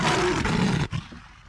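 A single loud, rasping leopard growl rumbles for most of a second, then breaks off and trails into a quieter, fading rumble. It stands alone with no talking.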